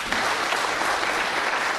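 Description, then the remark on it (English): A crowd applauds a question from an audience member. A dense, even patter of many hands clapping at once, sustained at a consistent loudness without any voices rising above it. “Let's clap it up.”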